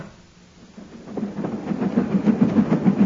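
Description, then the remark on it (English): A moving train rumbles in and grows louder, its wheels beating out a steady, rapid clickety-clack over the rails. No voices are heard. “Stop the train.”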